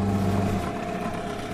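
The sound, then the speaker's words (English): A steady mid-pitched engine drones, with a strong low hum that eases slightly partway through, as a motorboat throttles down while approaching a jetty at a blue log cabin on calm water. “So we're approaching what you call the Blue Cabin.”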